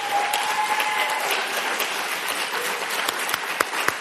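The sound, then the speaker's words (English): Sustained applause from a conference audience for the conference organizers, a dense, steady patter of many hands clapping at an even loudness, with a few sharper individual claps standing out near the end. “For their good and necessary labors, just over your applause,”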